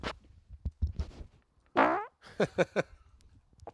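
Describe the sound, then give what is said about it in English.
A loud fart into a microphone, with a long buzzing blast followed by a quick series of shorter sputtering pops, trailing off into faint rustling. “Do you want me to fart into the microphone?”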